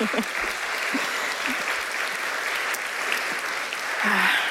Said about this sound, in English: Round of applause for these guys and their trip.